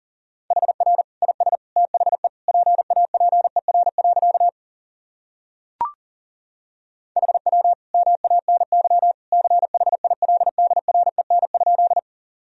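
Rapid Morse code sent at 40 words per minute, sending practice sentences built from the top 300 words and abbreviations: a single steady mid-pitched tone keyed in quick dots and dashes, two long runs separated by a pause broken only by a short click.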